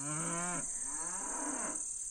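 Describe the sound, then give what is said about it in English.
Two drawn-out cow moos in a row, the first sliding down in pitch before a short break, the second lower and longer, with a steady high hiss behind them. “Always important to know what mood your cows are in.”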